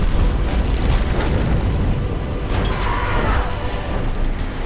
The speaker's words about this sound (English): in this clip, the chase heads into a sandstorm where cars are sucked into the sky and explode like fireworks.